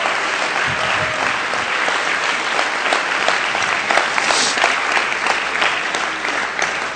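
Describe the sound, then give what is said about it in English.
An audience applauds steadily for several seconds as praise to the Lord, a dense wash of many hands clapping at once, loud and sustained with no voices rising above it. “Let's give the Lord a hand clap of praise for that.”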